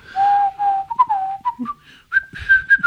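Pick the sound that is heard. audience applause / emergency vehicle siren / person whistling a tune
person whistling a tune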